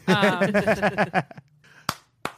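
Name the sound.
clapping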